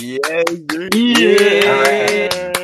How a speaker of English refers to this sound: Clapping noises.